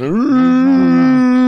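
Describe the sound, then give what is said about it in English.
A person imitates a whale with one long, loud, moaning hum that slides upward at the start, then holds a steady low pitch for over a second. “I'm like, I can do whale sounds.”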